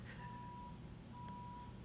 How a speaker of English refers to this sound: worrying about the truck backing up.